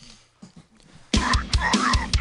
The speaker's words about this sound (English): Oh, boy. Starts up with a burp.